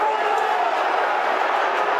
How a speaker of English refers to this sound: Crowd venting their spleen at Burke.